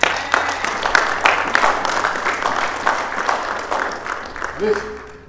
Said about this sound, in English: Give him a hand clap.